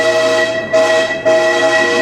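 A loud, sustained train horn sound effect blares with steady tonal harmonics, briefly dipping and then sounding again, prominent with no voices.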